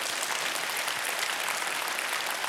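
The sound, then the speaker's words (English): A crowd applauds steadily, a dense wash of many hands clapping at once with no breaks, holding an even, fairly loud level throughout. “All right, so you guys can clap and say amen, because I know a bunch of you are wanting to do that right now.”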